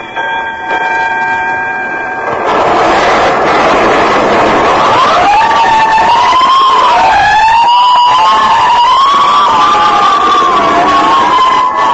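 Fire engine sirens wail loudly at night, rising and falling in long sweeps over a steady rumble of engines, preceded by a brief blaring horn-like tone at the start. No one speaks.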